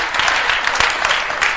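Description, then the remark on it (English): An audience claps steadily, a dense patter of many hands blending into continuous applause at a fairly loud, even level, with a few sharper individual claps standing out. “I think it's nice to clap.”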